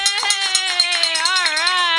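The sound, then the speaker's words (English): A wine glass rung like a bell during a radio pledge drive gives a sustained, bright ringing tone with shimmering overtones and a slight waver in pitch, broken by faint taps and clicks. “he's got a bell. Listen to that.”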